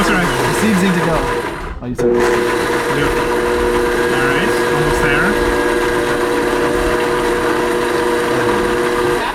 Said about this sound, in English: It's totally dead. The blender. Blender's not dead. The blender's not dead.